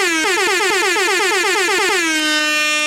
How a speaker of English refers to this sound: Hey, shout out to my mom, man. It was just my mom's birthday yesterday. Mama. Air horns for my mom.